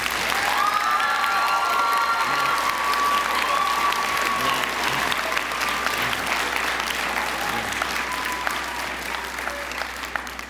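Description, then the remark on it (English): An audience at a school philosophy awards event in Ireland applauds steadily, a dense patter of clapping with a few whistles and cheers rising early on, sustained at a fairly even level before easing slightly at the end. “So give a clap for philosophy.”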